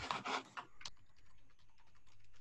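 Rapid, uneven clicking of keys on a computer keyboard, picked up by a microphone, starting with a few louder clacks and then continuing as quieter, steady tapping, with no one talking.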